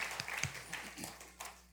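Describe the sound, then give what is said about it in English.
A church audience claps together in a steady patter of many overlapping hands, moderately loud, for a moment before thinning out. “If you're glad for their decision, would you say amen? Amen. Or clap, whatever.”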